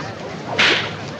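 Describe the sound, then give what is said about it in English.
A single sharp whip crack snaps out loud, a bright burst that fades quickly over a steady background hiss, with no one speaking. “You seem to have got slightly mixed up with this whip of yours.”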